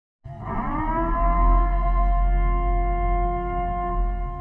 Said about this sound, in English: But in the very rare occasion where the switch actually accidentally gets switched on, my ringtone on my phone is the purge siren.